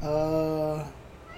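A single drawn-out, steady meow lasting under a second, fairly loud, most likely a person's voice imitating a cat, followed by a quiet hum.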